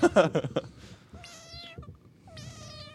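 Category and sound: animal, cat meowing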